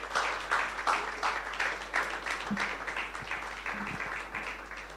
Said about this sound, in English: Let's give Renault, Taliant, and Premier Motors a round of applause.